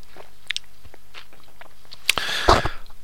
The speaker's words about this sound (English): excuse me, another sip of coffee.